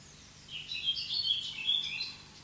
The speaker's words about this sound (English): Let the sounds of those birds come to you right now. Let your body be like a satellite dish, a big ear, not having to go anywhere, but receiving sound.